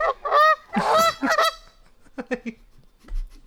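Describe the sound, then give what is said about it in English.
Loud, nasal goose honks in a quick burst of several calls, then a few softer, scattered honks trailing off, with a low thump near the end. “That was a goose sound, but no one's the wiser.”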